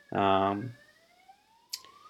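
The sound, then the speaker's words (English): A short burst of a voice opens, then a faint emergency vehicle siren wail from outside rises slowly in pitch, with a brief sharp click near the end. “I'm going to see if those sirens are for me”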